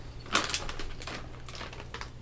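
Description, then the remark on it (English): A plastic bag crinkles in irregular, crackly bursts, a few louder rustles standing out among softer ones, with a steady low hum underneath and no voices. “There's crinkle ASMR.”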